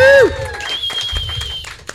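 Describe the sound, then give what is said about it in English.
A short burst of audience clapping, scattered and uneven, layered under a loud falling whistle-like tone at the start and a thin, steady high tone that holds through most of it. “when I have him clap for you, you got to go back to your seat.”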